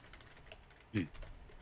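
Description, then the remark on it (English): Quiet clicking of keys on a computer keyboard as someone types a message, with a brief louder burst of sound partway through before the soft tapping continues. “I'm typing a message to you right now.”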